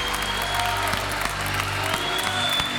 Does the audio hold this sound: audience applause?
yes